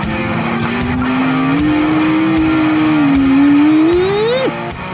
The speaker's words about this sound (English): The NIO EP9 electric car drove a 6:45.9 laps time, Germany's Nürburgring track.